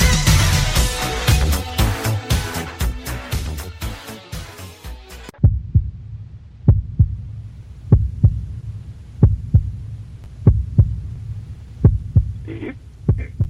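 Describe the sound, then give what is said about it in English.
A few seconds of dense music cut off abruptly, leaving a heartbeat sound effect: steady, deep thumps, about one per second, repeating with a soft low hum beneath. “And I was just waiting for the heartbeats to stop.”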